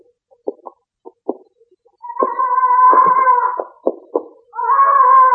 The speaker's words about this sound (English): Hello, what's that? Parrot. Leech keeps it upstairs in the flat.